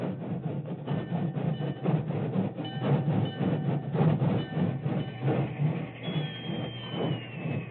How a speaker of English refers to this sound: It was only a short time later, and the rain was barely a drizzle, when an engine whistle announced the work train's arrival on the main track beside the Medicine Hat telegraph station.